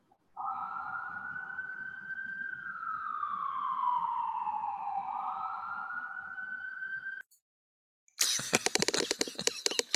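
An emergency vehicle siren wails steadily for several seconds, its pitch slowly sliding down and back up, then cuts out abruptly before a burst of harsh, crackling noise.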